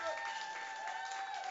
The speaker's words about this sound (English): Ladies and gentlemen, please, a big round of applause, if you would. Please.